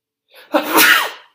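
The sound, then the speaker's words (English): A single loud sneeze: a brief sharp intake building into an explosive, breathy burst that trails off quickly, with no talking around it. “I'm going to sneeze.”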